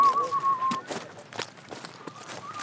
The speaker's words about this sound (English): I had a great childhood whistling away to myself.